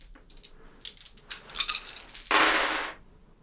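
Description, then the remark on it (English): Dice clatter as they're rolled for a manipulation and persuasion check, giving one success: a run of sharp, bright clicks and taps, then a louder burst of rattling that lasts under a second before it fades to quiet. No one speaks. “Dice are not in my favor today.”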